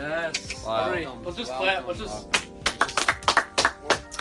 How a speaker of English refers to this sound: Let's just clap.